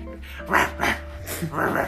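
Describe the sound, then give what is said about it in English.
A voice imitates a goblin barking, with four rough, guttural barks in quick succession, fairly loud, with no other talking. “He kind of just like barks at you in goblin.”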